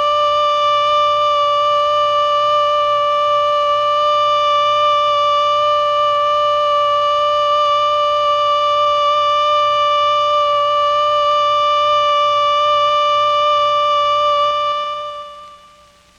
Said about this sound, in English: The alert signal is a steady blast on a siren or fire horn of 3 to 5 minutes duration. This is how it sounds.